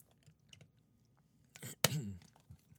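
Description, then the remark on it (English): Someone takes a quick sip of water at the mic: faint wet mouth clicks, then a brief slurp and a swallow, with no talking. “I'm going to have a sip of water and then get into it.”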